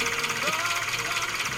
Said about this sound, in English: You want to hear my old boat?